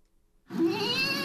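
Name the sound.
kitten meowing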